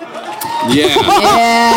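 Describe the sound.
An audience at a live theater piece applauds and cheers, with several voices whooping in rising and falling tones over a steady wash of crowd noise that grows louder after the first half second.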